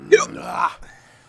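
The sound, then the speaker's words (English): A sharp, high hiccup pops out, followed by a strained, wavering vocal sound and a soft click, then near silence. “I got the hiccups now.”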